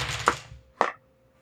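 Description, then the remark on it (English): Three dice and a hope die are rolled in a game, clattering onto a hard surface, two sharp clacks about half a second apart, each with a short rattling tail, then quiet. No one speaks. “I'm rolling 3 dice and a hope dice.”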